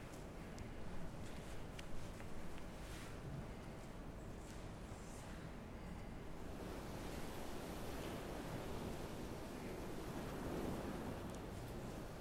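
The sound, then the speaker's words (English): A constant, heavy roar of rough sea waves, with churning surf and wind noise filling the whole clip, steady and loud with slight swells throughout. No voices are heard. “Storms. Even the most seasoned seafarer trembles at the first clap of thunder on the horizon.”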